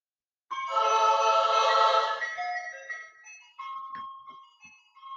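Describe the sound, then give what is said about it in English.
A bright, tinkling ice cream truck jingle plays loudly, its chiming melody ringing out in steady notes for several seconds with no voices. “Here's the music that we used to hear when we was growing up. And I tell you, we used to run to that ice cream truck left and right because it brings a beautiful feeling to us all.”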